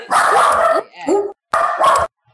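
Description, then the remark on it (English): A dog barks loudly, a quick run of about four sharp, harsh barks in two bursts with a short pause between, no talking over them. “Also, we just got a dog episode.”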